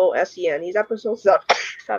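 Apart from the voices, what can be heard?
sneeze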